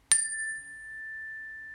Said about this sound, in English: So we're going to start with three cleansing chimes.